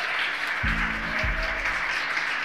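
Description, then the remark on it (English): Steady applause from a crowd at mission control in Hawthorne after the Falcon 9 second stage delivers four crew into orbit, a dense wash of many hands clapping at once, with a low rumbling hum rising beneath it partway through. “We hear the applause here in Hawthorne.”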